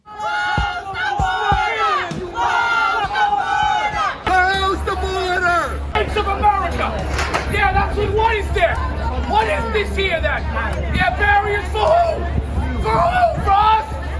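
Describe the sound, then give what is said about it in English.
A loud, angry crowd at a city event attended by AOC shouts and jeers over one another in a continuous dense babble, with overlapping yelling voices, including shouts of "Close the border!", and a steady low rumble underneath. “This is not a crowd to lie or lecture to.”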